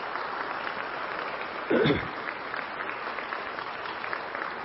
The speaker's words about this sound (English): 50 years this couple's been married. I think they deserve a round of applause for that. Congratulations.